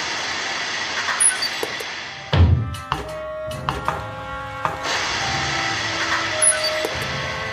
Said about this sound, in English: As the two walk off, joining the others who are headed in the direction of the music, another vehicle rolls into the parking lot. It's the crawler.